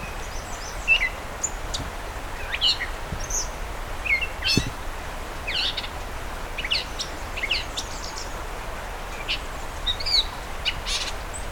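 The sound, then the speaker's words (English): A catbird sings a varied, jumbled song of short chirps, whistles and squeaky phrases, mimicking other birds such as killdeer and tree swallow, over a steady outdoor background hiss, with no voices. “He's doing a lot of mimicry.”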